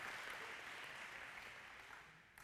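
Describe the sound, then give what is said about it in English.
Thin, scattered applause from an audience clapping for a song played with pictures of Haiti, a steady patter of claps that stays quiet and even for a couple of seconds before cutting off. “Come on, you can clap for that. You guys are the reluctant clappers tonight, right?”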